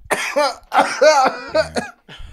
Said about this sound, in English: Sorry, I got a little cough. Just clearing it up.